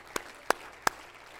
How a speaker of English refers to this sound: Everybody clap your hand to Jesus today.